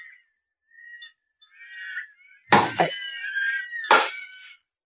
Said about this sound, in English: Well, listen. Sounds like carpenters was at work. Any idea what that rapping is, LeBrun? No, but it sounds as though it might be coming from our prison chamber.